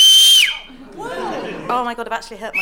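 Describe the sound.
A piercing, loud human whistle rings out on a single high steady pitch for about half a second, then drops away, followed by chuckling and animated voices.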